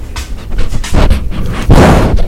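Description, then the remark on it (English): A male dog sniffs right at the microphone, giving a run of quick, breathy snuffles followed by two louder, rushing blasts of air. No one speaks. “What, are you gonna smell the microphone? Give it a good sniff.”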